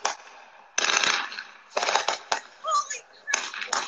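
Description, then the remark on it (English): Fireworks set off by people in Cleveland, Ohio, heard from a video, crackle and pop in several loud, irregular bursts, each a dense spray of sharp snaps lasting about half a second to a second, with quieter hiss between them. “Folks, if you're hearing that in the background, this is a video of people setting off fireworks.”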